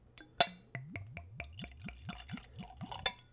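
Whiskey poured neat from a bottle into a tulip-shaped whiskey nosing glass, starting with a bright clink and followed by a quick run of about nine rhythmic glugs, clear, with no talking.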